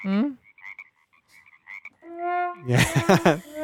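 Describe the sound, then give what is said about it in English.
A cartoonish frog croak sound effect played from a sound effect button: a few short ribbed croaks, a drawn-out wobbling tone, then a loud raspy croak at the end, played clearly with no talking over it. “who hit that button, Frog Legs”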